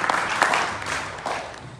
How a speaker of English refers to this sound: I know they can't, maybe we could clap loud enough they could hear our applause.